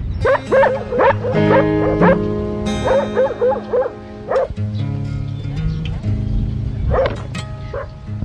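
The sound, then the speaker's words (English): Several dogs bark and yip in loud bursts in a cemetery, some barks tumbling over one another, with a few whiny yelps mixed in and short lulls between the flurries. “About 10 years ago, the cemetery was a popular hangout for prostitutes and junkies, but now it's just dogs and their owners.”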